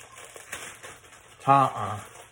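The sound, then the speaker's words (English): A bag is opened with a run of soft, papery crinkles and rustles, followed by a brief louder tonal sound near the end. “Open the bag.”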